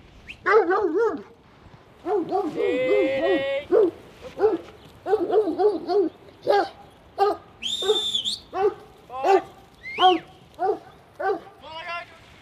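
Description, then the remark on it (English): Several working dogs bark and yelp excitedly in quick, repeated bursts from the back of a ute on a farm, one staring at a small mob of sheep in the paddock, with a high whine and a brief whistle-like squeal mixed in among the barks. “Now, your dogs are raring to go. They're in the back of the ute right now, and one of them is staring at that small mob of sheep in the paddock.”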